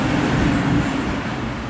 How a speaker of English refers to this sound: There goes the truck noises. There's my background music for you.